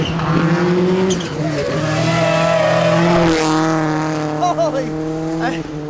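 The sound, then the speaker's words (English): A race car engine roars loudly at high revs on a track, its pitch shifting sharply as it speeds past midway through, then continues droning at steady speed. “He went by too fast.”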